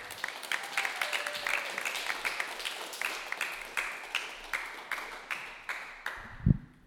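A comedy show audience applauds steadily as a comic is introduced onto the stage, a dense patter of many hands with some sharper individual claps standing out, holding at a moderate level for several seconds before a brief low thump at the end.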